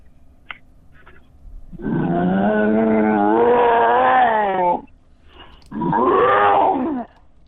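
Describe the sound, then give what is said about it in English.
A person voices a deep, growling roar imitating an angry shark: one long sustained bellow about three seconds, a short pause, then a second shorter roar, loud. “Like imagine you're an angry bull. I could be an angry shark.”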